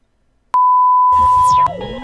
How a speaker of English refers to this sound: I hope this tone not only helps you enjoy this episode, but also teaches you something about how you listen. Here comes a Miles tone. The first tone.